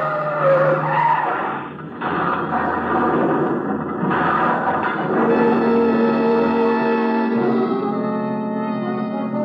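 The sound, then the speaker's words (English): A car skids hard around a curve, tires squealing loudly and continuously for several seconds with the engine roaring underneath, the screech shifting in pitch as it slides. “Stop the car! No, no, Lucille. Danny, the curve! Look out!”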